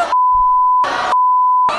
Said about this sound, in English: You gotta bleep one single word, though.